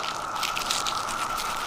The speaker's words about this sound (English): I'll just crunch these exoskeletons for you. I have three of them here, and I have my garden gloves on.